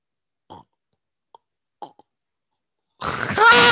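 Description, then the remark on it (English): A voice attempts a predator creature's call: a few soft, scattered throaty clicks and gurgles, then an abrupt loud, rough, breathy burst that carries to the end. “I can do the predator sound.”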